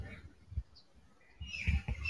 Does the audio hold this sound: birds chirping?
yes